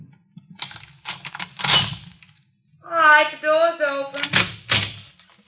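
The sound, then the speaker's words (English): A quick series of metallic clicks and rattles as the door lock of room 306 is worked and the door opened, followed by a person speaking and a few more knocks and clunks. “All right, the door's open.”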